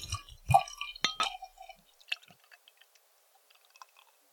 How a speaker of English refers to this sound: And that is pouring quite well.